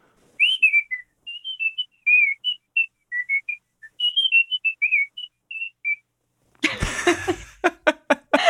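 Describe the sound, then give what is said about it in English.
A person whistles a brisk, bouncy marching band tune of short, clipped notes for several seconds, clear, then breaks off into a few bursts of laughter. “Like a little marching band ditty. Yeah, it's like, I think that one's called Molly on the Shore.”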